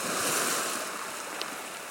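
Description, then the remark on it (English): A steady, full-bodied wash of sea surf, like waves breaking and rolling onto a shore, heard alone without any voices, its hiss swelling slightly before easing back. “the sound of the sea.”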